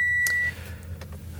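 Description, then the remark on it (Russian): A steady high electronic beep sounds over a low car engine rumble as the car is being switched off, cutting off after about half a second while the engine hum carries on. “Выключил машину и понял, что погорячился.”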